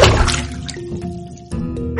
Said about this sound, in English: Ew, disgusting. You just sprayed me with all the water from the mop.